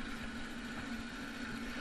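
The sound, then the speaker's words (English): A steady tractor engine drone runs without a break as the tractor pulls a plow, a low mechanical hum with a constant pitch and even loudness. No voices are heard. “Here we're pulling it with a tractor in case you don't have mules.”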